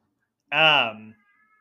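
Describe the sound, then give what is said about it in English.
A boy's scream in the house, heard ever so faintly, rises as one drawn-out, high-pitched wail lasting about half a second, sliding downward in pitch before trailing off into a lower tail. No one speaks over it. “Can you hear my son screaming? Ever so faintly.”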